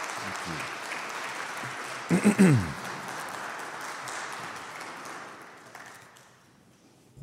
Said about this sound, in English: Please help me welcome Student Minister Ismail Muhammad with a round of applause.